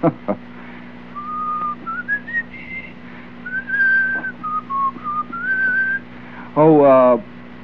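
A person whistles a short, wandering tune of sliding notes, clear, over a low steady hum, then a brief burst of voice follows at the end.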